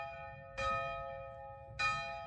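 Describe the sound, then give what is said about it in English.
A church bell in a bell tower, rung by a woman pulling its rope, rings twice, each strike bursting with bright metallic harmonics that hum and slowly decay into a sustained ringing drone, with no voices present. “they all went up to the bell tower and she pulled the rope and just rang the bell over and over and over.”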